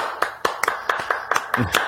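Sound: audience clapping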